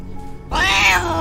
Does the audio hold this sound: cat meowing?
yes